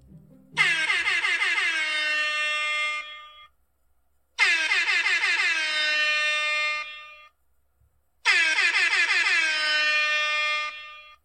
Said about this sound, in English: Let's sound the air horns to make it official.